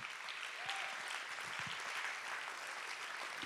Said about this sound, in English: Oh, let's clap our hands. Somebody wants to clap.